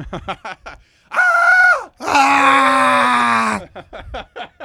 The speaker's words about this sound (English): So I'll push 2 or whatever it is to be transferred to an operator. I'll let them give the whole spiel, and then I'll just scream.